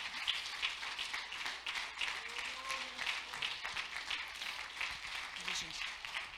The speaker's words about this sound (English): Why don't you stand right now, clap your hands and love the Lord right now.